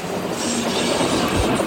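A moving train rumbles steadily, a dense, even roar of wheels on track that holds at the same loudness throughout, with no voices.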